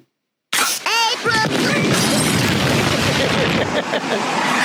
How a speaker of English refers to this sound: That sounded like an explosion at the old Simpson place. Forget it. That's two blocks away. Looks like there's beer coming out.